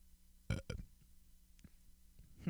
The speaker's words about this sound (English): All right, I'll just keep burping.